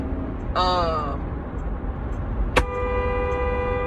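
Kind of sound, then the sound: vehicle, car horn honking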